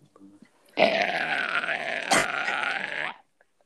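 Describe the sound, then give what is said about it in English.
A person imitates a goat with one long, strained bleat lasting over two seconds, raspy and wavering in pitch, with a brief click partway through. A short soft sound comes before it. “That literally, it sounded like an Italian goat.”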